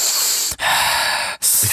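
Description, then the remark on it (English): Loud breathing: a sharp, hissy inhale followed by two more long airy breaths in quick succession, each separated by a brief pause, with no talking, as a person steadies their breathing before starting a recording. “to like get my breathing normal.”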